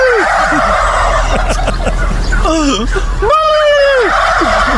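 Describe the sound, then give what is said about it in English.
Several turkeys gobble back and forth in response in rapid, warbling bursts, loud, with overlapping calls and a steady background hum throughout. “Apparently, if you make the noise, all the turkeys will make the noise back.”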